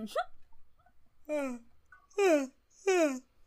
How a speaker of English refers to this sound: Yawning. Sorry.